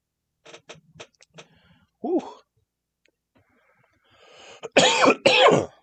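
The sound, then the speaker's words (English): A quick series of sharp clicks, like a lighter being flicked, then a short throaty noise, then two loud, harsh coughs near the end from a person smoking weed. “If you hear click, click, cough, cough, be an adult. We smoke weed in here.”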